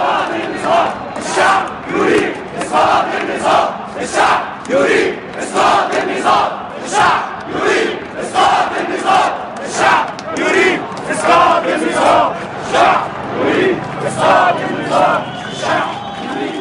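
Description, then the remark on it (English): A large protest crowd chants in unison against the whole regime, a chant first heard in Tunisia, during protests against Mubarak, loud and steady, repeating a short rhythmic phrase over and over with many voices merging into a roaring, pulsing cadence. “That resonated so strongly because it was a chant that we'd first heard in Tunisia, and it was about a change of the entire structure.”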